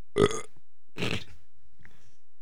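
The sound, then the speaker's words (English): Two loud belches in a row, each about half a second long and raspy, followed by a faint trailing gurgle; no talking. “can you isolate that burp so we could use it whenever we need?”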